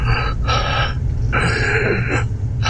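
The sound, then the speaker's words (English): A voice imitates the ragged, labored breathing of a wounded person heard from above in a dark room: about four harsh, uneven breaths in and out, fairly loud, with brief pauses between and no words spoken. “So even before your glow globe has kind of crossed the surface, you can hear sort of ragged breathing up above, like...”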